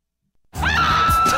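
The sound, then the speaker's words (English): After a moment of silence, a woman lets out a single loud, piercing scream that rises sharply, then holds a shrill, sustained high pitch to the end. “How about, let's get the lady scream.”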